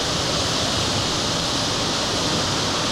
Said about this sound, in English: Good old white noise for those of you trying to sleep.